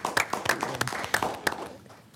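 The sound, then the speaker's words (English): A group in a meeting room applauds young people from the community, with sharp, irregular claps overlapping in a steady patter at moderate loudness that thins out and fades toward the end. “Can we just applaud these young people for their?”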